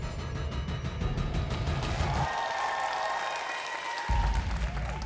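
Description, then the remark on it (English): A large crowd cheers and applauds continuously, a loud dense roar of clapping and shouting with a few high whistles rising through it, echoing as if in a big venue. “He relaxed as the crowd's cheers reverberated around him.”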